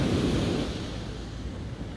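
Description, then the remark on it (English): Steady ocean surf washes against the shore, a broad continuous rush with a heavier surge at the start that eases into a softer, sustained wash. No voices, just the enveloping roar of waves. “As I look at the waves, I think about grief and how it's ever-changing, just as the ocean is.”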